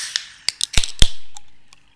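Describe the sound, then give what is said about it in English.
A few small metallic clicks lead into a sharp crack as a can of Nitro Pepsi is popped open, followed by a steady fizzing hiss that slowly fades out. No one speaks. “All right, we're popping this? Oh, listen to that.”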